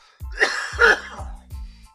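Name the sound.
coughing and throat clearing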